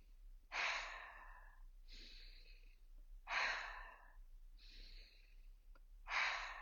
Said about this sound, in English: And we'll begin to cultivate some cleansing breath that will have an inhale through the nose and an exhale through the mouth. It'll sound like this.